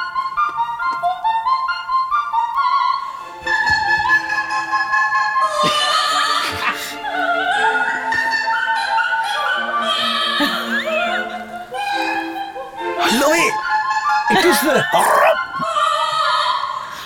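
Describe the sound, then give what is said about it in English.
Music of "Oh My Darling, Clementine" plays alone at first, then a parrot joins in with warbling, squawky sing-along calls over it, broken by a few sharp, shrill shrieks toward the end. “The parrot will come in shortly.”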